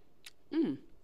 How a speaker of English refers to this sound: You know when you're drinking wine, you gotta do your little swerve around the glass because we're classy. First sip.